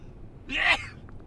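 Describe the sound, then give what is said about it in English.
A single loud sneeze: a brief voiced intake that bursts into a sharp, hissy blast lasting under half a second, followed by near quiet with no talking. “I sneeze like my father. My dad sneezes so fucking loud, and I always, whenever he sneezes, I go, Jesus.”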